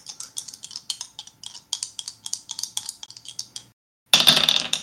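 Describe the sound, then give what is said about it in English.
Dice clatter and rattle on a table in a rapid, irregular series of sharp clicks for several seconds. After a brief pause comes a louder, denser burst of clattering. No one speaks. “So on the dice, that is a 9.”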